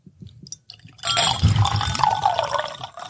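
A few soft taps, then a steady pour of whiskey into a Glencairn glass for about two seconds, splashing and gurgling as it fills, with no voices.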